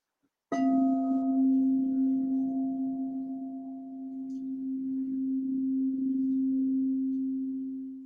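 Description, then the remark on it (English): A singing bowl is struck once and rings out with a sustained, shimmering tone that swells and wavers slowly, lingering steadily for several seconds with no voices present. “I'm going to use my singing bowl here to just give some tones, and I'm hoping you can hear it.”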